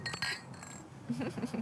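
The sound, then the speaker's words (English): Glasses clink together in a quick cluster of bright, ringing taps during a toast given by a mother, followed by the murmur of people talking as the chime fades. “Yes, the mom has a toast.”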